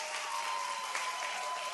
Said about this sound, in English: So, and again, let's give our dunkers a big round of applause.